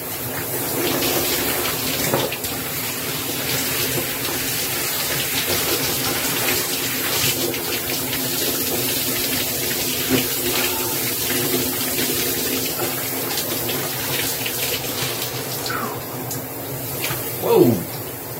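A shower runs steadily, a dense, continuous hiss of spraying water, with a brief louder splash or squeak near the end and no voices.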